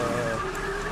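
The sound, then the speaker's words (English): A car horn blares in one long, unbroken blast from an upset driver, loud, with a steady, slightly wavering tone and no voices. “Honking the horn, getting upset.”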